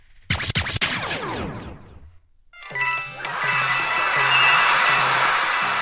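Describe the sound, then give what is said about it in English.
A quick burst of bright, ringing video game coin chimes with falling tones, then a short pause before a loud, dense wall of high-pitched cartoon cheering from Toads mixed with music swells and holds, at the end of Toad Rally in a Nintendo Mario game. “But you get to hear coins and Toads cheering and all that shit.”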